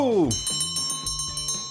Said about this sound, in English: And there's the opening bell.